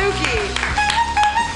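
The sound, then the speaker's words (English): An audience claps, with a few sharp bursts of hand claps rising over a busy mix of talking voices and tonal sound. “You keep your hands clapping together for guys.”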